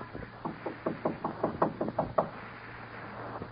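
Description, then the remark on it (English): A steady run of about ten firm knocks on a door, evenly spaced over two seconds, then quiet with only a low background hum. No one speaks. “Knock again.”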